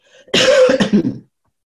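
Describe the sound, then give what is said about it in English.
A loud cough bursts out, then trails into a few rough, rasping throat-clearing pulses, lasting about a second with no talking around it. “I still have a cough.”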